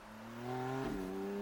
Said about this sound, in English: While the couple are looking for the first aid kit for you, you quickly open the car door and see the keys are still in the ignition. You get into the car and drive off.